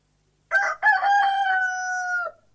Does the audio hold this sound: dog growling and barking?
no